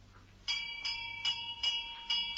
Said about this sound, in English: She ran up the steps, carrying her weekend case, and rang the doorbell.